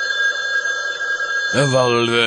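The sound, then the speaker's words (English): A telephone rings with a steady, high electronic trill for about a second and a half, then cuts off as a man's voice starts talking. “That's not your phone!”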